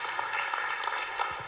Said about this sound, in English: Oh, you're clapping.